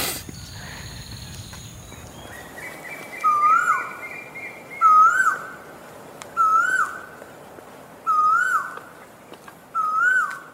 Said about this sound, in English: What was that? There was the... That was the quail.